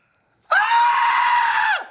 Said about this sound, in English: I don't think I can even do that scream now. Can I try that scream?